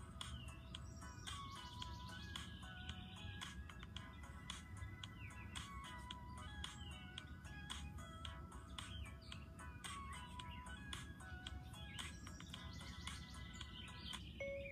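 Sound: birds chirping and singing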